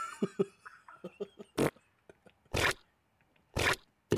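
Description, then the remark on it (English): A wet fart sound effect: a run of short, sputtering pops followed by three loud, noisy, squelchy blasts spaced about a second apart, with no talking. “Here's a good example of a good wet fart.”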